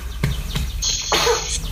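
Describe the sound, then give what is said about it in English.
A short, breathy burst like a sneeze or cough, followed by a hissy exhale, with faint background noise and no talking. “Those sneezes or coughs?”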